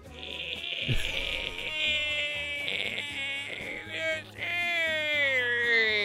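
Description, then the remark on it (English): A voice imitates garbled, warbling goat-like bleating, mimicking distorted recorded audio, a continuous wavering nasal tone lasting several seconds, fairly loud with a brief dip near the end. “That's all you could hear. It was like, what? Are they in a goat barn?”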